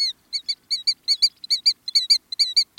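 A killdeer, a North American shorebird nicknamed the chattering plover, gives a rapid, chattering series of shrill, high notes in quick uneven bursts, clear, with no other sounds or voices around it.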